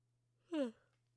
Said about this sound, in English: But even something like that, oh my god, I'm so sorry, I keep yawning.